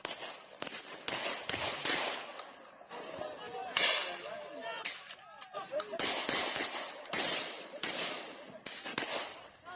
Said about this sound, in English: So if you're listening to this and not watching it, you can hear the gunshots going off, and people are just completely looting and smashing, and there's like buildings on fire and stuff. This is in South Africa.